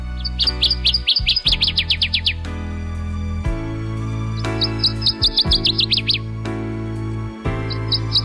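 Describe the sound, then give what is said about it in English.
A northern waterthrush sings loud, rapid bursts of sharp chirping notes in three separate phrases, each quickening toward its end, over a steady low background rumble. “Like its close and very similar relative, the Louisiana water thrush, it bobs its tail constantly, and it sings like this.”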